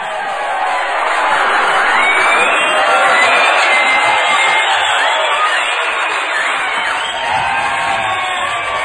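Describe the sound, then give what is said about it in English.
A crowd cheers loudly and steadily for about nine seconds, a dense wash of shouts, whoops and high whistles, with applause likely mixed into the roar and no pause or lull. “Don't we have like some sort of clapping soundtrack or something?”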